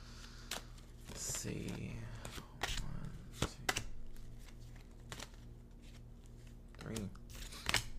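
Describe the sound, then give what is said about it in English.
Quiet rustling and sharp papery snaps of tarot cards being shuffled, with irregular flicks and slides as three cards are drawn, plus a low steady hum underneath. “So I'm shuffling up my cards right now. I'm gonna draw three cards very quickly.”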